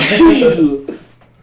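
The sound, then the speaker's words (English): A single loud, voiced sneeze bursts out and trails off over most of a second, followed by a brief quieter sound and near silence. “Get the corona? Sneeze.”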